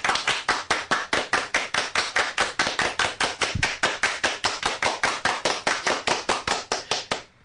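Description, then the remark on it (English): Hands clap in a steady, even rhythm, roughly four sharp claps per second, loud and crisp for about seven seconds with no talking, then stop. The clapping is done by award winners as part of their acceptance speech at an awards event. “In case you missed it, we're clapping.”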